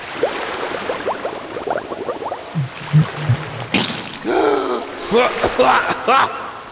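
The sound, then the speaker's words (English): Muffled underwater bubbling and gurgling as a person holds their head underwater, then surfaces sputtering, coughing and choking on water they accidentally breathed in, in several rough bursts. “Why are you choking? I breathed in the water on accident.”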